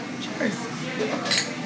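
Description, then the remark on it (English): Drinks, including a watermelon water, clink together in a toast, a few bright glassy taps in quick succession, with a faint murmur of voices in the background. “Cheers, ladies. Cheers. Cheers. Your watermelon water. Yes. Cheers.”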